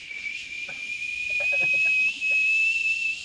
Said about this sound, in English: I got to shut my screaming toilet off because it's going to be picked up on the audio.